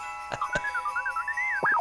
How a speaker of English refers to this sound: That, my silly friend, is the sound of bells.